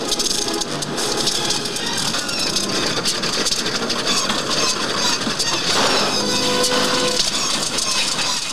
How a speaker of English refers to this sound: The sound effects when the planes are losing is when the Millennium Falcon can't go to hyperspace and Empire Strikes Back. It's the same sound.